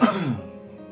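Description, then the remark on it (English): A single short cough with a sharp onset that quickly fades into a throaty rasp and then a quiet tail. No one is speaking. “Sorry, I coughed.”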